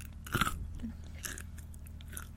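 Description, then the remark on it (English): Soft chewing of a chocolate treat, with a few crisp bites and crunches in quick bursts, fairly quiet overall with no talking. “Even your chewing noises are quiet.”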